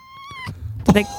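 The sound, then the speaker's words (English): A domestic cat, a marbled Bengal with stripes and spots, meows once close to the microphone, a short steady high-pitched cry, followed by bumps and scuffling noises as it claws at and tries to climb the microphone, and a brief burst of sound right at the mic. “Do you think that got caught on the mic?”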